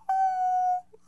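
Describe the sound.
A person imitates a dog's soft whine: a single thin, steady high-pitched tone held for under a second, then cut off, with a faint breathy sound after.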